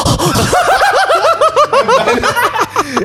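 Heavy, gasping breaths come in quick voiced bursts, loud, with a strained, almost laugh-like rhythm that keeps repeating for a few seconds.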